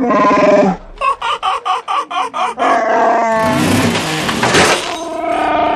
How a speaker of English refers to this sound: The Wookiee roared with rage.